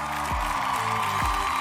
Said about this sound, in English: I want you also to give a big applause to my fellow podcast members.